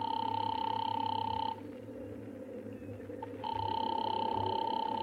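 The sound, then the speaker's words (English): A telephone operator rings a subscriber's line: two long, steady electronic ring bursts separated by a pause of about two seconds, thin and filtered, over a low background hum. “I'm ringing.”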